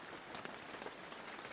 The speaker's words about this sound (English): The rain falls relentlessly.